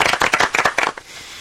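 A short burst of applause, brisk overlapping claps from a small crowd for about a second before quickly dying away into quiet.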